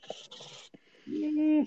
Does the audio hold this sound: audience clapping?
no